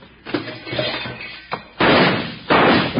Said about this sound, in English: now who in the heck is shooting at us and why?